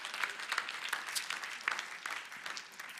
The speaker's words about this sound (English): Yeah, give him a clap. Come on, give him a clap.